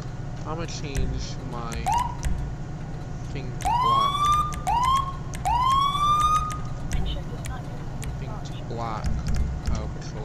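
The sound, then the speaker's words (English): A fire truck siren in a video game sounds in several quick rising whoops, fairly loud over a low rumbling background, with faint voices around it. “One Lincoln 09, I hear your fire siren, but I do not see your actual trucks.”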